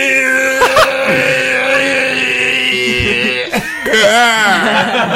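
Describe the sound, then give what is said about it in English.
A player voices a hurt creature's scream during a tabletop game: a loud, sustained, strained wail that wavers in pitch, breaks briefly, then rises again in a warbling, bending cry for about five seconds. “Again, if you want to do your scream.”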